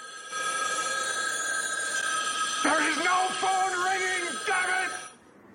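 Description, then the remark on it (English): Several pay phones ring at the same time in a steady, overlapping electronic trill that fills the whole stretch, with a voice briefly calling out over the ringing partway through. “which he's out and about and all the pay phones just start ringing at the same time.”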